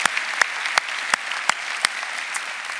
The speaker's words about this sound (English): Let's give all those people a hand. God bless y'all. God bless you.